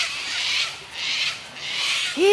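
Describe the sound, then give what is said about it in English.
Sulphur-crested cockatoos call loudly, three long harsh rasping screeches in steady succession with brief dips between, followed at the very end by a short, lower, rising tonal sound. “Eww, those sulphur-crested cockatoos are so loud.”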